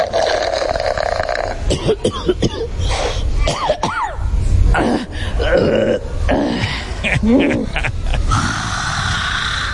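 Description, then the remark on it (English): Loud bodily noises of a woman eating and drinking rapidly at dinner follow one another: heavy breathing, gasping and choking sounds broken by guttural burps, with some mouth noise and scraps of voice in between. “throughout the dinner she was breathing heavy and constantly choking and burping.”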